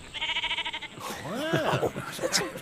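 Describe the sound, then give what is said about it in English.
A shepherd's sheep lets out one wavering, tremulous bleat, fairly loud, lasting about a second; a person then starts talking right after it. “Are your sheep safe? Will they run? No. They know who to follow.”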